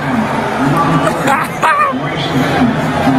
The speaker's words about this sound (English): Apparently, the NBA is not a big Joe Biden fan. Listen to this. Really? You got booed. Everybody's booing Joe Biden. Everybody's booing him.